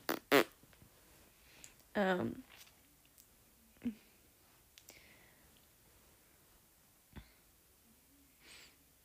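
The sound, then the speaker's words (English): Several short, buzzy fart noises burst out at irregular intervals, one longer and louder sputter among them, with faint breathy rustles in the quiet gaps between. “Oh my god, fart noises.”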